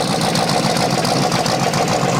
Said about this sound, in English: All right, so this is the Dirty Hooker truck pulling up onto the dyno. It's one of the dynos that is on the back of a truck, on the back of a semi. There it goes.